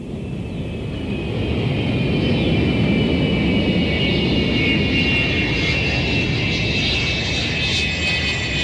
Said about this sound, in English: The plane landed in Jakarta, Indonesia.